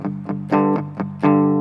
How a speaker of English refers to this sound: Let's try it. OK, so I have, it's the first, it's also kind of crunchy amplifier.